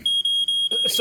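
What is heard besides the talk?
smoke alarm beeping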